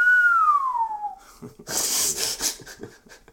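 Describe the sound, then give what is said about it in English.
A single clear whistle glides steadily downward in pitch for about a second, followed by breathy, hissing exhalations and snorts. “I had to get that whistle.”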